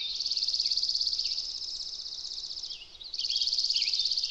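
A warbling vireo sings a rapid, run-on warble of high, tumbling notes, one long phrase followed by a brief pause and a second burst, steady in loudness with no voices.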